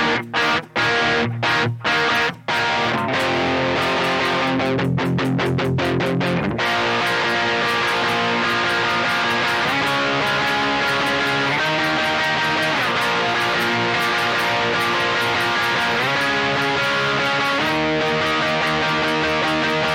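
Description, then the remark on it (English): A loud electric guitar with a tone set between distortion and overdrive plays alone, opening with a burst of choppy muted strums before settling into ringing, sustained distorted chords that shift every couple of seconds. “I've been kind of keeping it somewhere between distortion and overdrive.”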